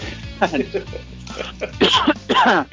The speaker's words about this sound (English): I do have a cough though, so you're probably going to put up with it.